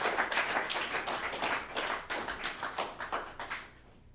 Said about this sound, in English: Have a round of applause for all of our readers. Thank you so much. Everybody was great. One more time.